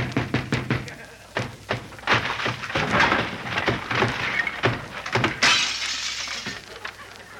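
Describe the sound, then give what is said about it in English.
A wooden door being broken down, loud: a quick run of heavy blows and cracks gives way to sustained splintering and crashing, ending in a final burst of breaking wood. “Open this door, I'll break it down.”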